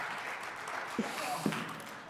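A steady wash of audience applause fills the room, many hands clapping together at a moderate level, with a couple of brief louder bursts standing out partway through.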